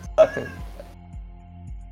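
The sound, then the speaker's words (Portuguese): A pet cat lets out one short, whiny meow near the start, followed by quiet low pulses repeating at a steady pace with no talking. “Eu tô com um gato aqui me distraindo.”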